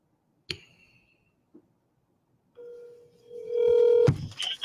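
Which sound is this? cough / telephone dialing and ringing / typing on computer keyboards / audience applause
telephone dialing and ringing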